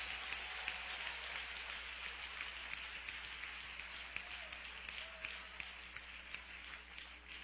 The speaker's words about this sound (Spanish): ¡Dele el mejor aplauso que le pueda dar hoy domingo! ¡Aleluya!